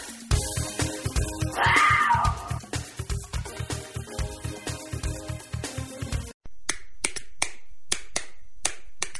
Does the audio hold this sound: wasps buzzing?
no